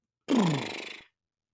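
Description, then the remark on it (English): A person vocally imitates a horse's snort: one loud, breathy blast that drops in pitch and ends in a brief fluttering rasp, with no other sounds around it. “I then heard a horse's...”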